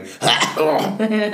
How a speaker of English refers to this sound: We sound like two people who struggle in their age with all the throat clearings and sniffling.